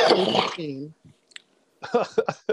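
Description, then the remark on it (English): A loud cough bursts right into the microphone, trailing off into a short throaty rasp, then a brief pause before someone starts talking. “you know where cough button is, right?”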